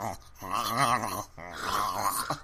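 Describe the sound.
A human voice imitates a small dog choking on its neck fat and growling, two strained, gurgling bursts with a short gap between them, loud.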